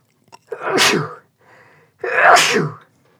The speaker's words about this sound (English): Hold on, I gotta sneeze.